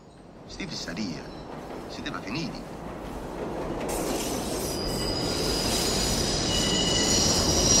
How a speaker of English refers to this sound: And you hear the train passing. So it's like the sound of the train. It gets louder and louder.